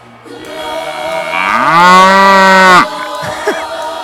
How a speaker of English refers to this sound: Oh, God, these cows in Seattle.